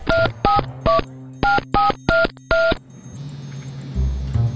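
Seven quick touch-tone keypad beeps are pressed in a steady, slightly uneven rhythm, each a short dual-tone chirp, followed by a low hum of line noise. Clear, no talking.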